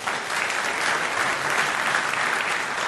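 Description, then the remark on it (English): An audience at an evening debate applauds steadily, a dense, even wash of many hands clapping at a fairly loud level with no pauses and no voices. “Your applause was robust and spontaneous throughout the evening.”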